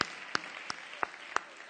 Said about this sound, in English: Yes, give yourselves a big hand clap.